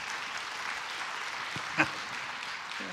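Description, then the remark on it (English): Soft, scattered clapping from a small crowd, a light polite patter of hands that stays quiet throughout, with one slightly sharper clap standing out midway. “I appreciate that golf clap.”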